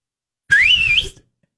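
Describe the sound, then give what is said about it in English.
A single loud, shrill whistle from a person, one sustained note that rises then wavers slightly before cutting off after under a second. It imitates a father's signalling whistle, used to call to each other while out hunting and to find children in a store. No talking. “And I knew my dad had a whistle, and I think I can still do it.”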